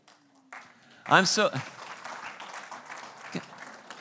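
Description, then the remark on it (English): An audience breaks into steady applause that swells and holds for several seconds, with a brief high vocal cheer rising over the clapping near the start. “Guys, I hope you're applauding for the Holy Spirit, because I didn't want to do that.”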